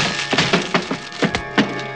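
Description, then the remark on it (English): Heavy wood cracking and splintering as a locked heavy panel door is forced with a shoulder until its hinges give way, a quick irregular series of sharp, loud snaps and creaks over a steady high whine, with no voices. “The door was locked, so I gave it the benefit of one of my shoulders.”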